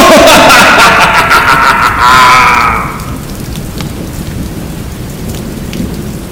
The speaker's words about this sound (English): Raise the antenna, the storm is at its height.